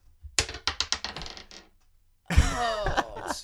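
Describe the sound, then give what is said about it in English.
Dice thrown across the room clatter across a hard surface in a quick run of sharp clicks that bounce, speed up and settle within about a second, followed by a burst of loud, overlapping voices. “I don't know why you guys have a fascination classic with throwing Jacob. The dice across the room”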